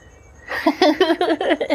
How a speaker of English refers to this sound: Because I often get anxiety, and I get anxiety when cats start yelling at me. Yeah, in the middle of a podcast. Go away, podcat. What are you doing?